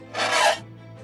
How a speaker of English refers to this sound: The metal groans in response back.